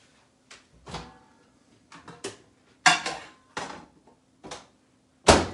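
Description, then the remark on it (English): A microwave door clunks open and shut amid several sharp knocks and clatters, with a faint, steady low hum running underneath as popcorn shrimp are heated in the microwave; no one speaks. “So, but for the sake of this review, I'm gonna put it in the microwave and then see how they taste.”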